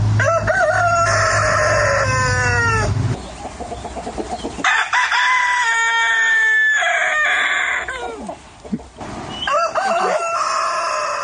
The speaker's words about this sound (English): The sound of crowing roosters. Is this what you heard? Correct. Was it as loud and upsetting and annoying as that? Absolutely.